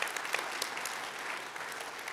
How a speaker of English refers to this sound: It's a moment to clap. It really is.